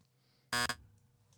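A quiz buzzer sounds once, a loud, harsh, harmonically rich buzz lasting about a quarter second with a tiny stutter near its end, set against near silence.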